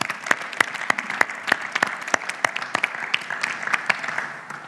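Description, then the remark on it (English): An audience at a church applauds steadily for several seconds to honor the people serving at the back, a dense patter of many hands clapping with some sharper individual claps standing out, with no talking over it. “And so maybe we can just honor the people at the back that are there now, actually, and clap for them.”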